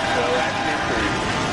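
A rocket engine's roar at liftoff of a SpaceX Dragon capsule launched from the Kennedy Space Center in Florida toward the International Space Station: a loud, dense, continuous rumble spread across low and high tones, holding steady without pauses or rhythm for the whole stretch.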